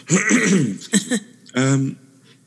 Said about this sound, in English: It's funny how you started on, now I'm going to have to cough.